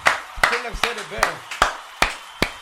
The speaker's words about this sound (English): Yeah, I'm clapping.